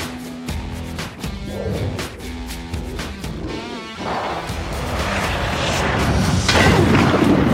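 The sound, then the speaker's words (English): Loud thunder from a film scene: sharp cracks and heavy booms, then a deep rolling rumble that swells louder through the second half, with a musical tone underneath at the start. “Okay, now I see why you need the thunder.”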